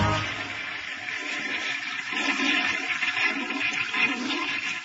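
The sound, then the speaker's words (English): A toilet flushing, with a steady rush of water and swirling gurgles that continue for several seconds, no voices. “Suck that last baby down, baby. That last Tootsie Roll, please.”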